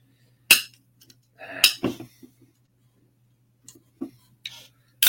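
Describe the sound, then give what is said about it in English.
A can of stout brewed with cold brew coffee, cinnamon, vanilla and lactose cracks open with a sharp metallic snap and a short burst of fizzing hiss, followed by a few faint clinks and taps, with no talking. “Let's crack her open.”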